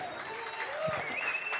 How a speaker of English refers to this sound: Big round of applause.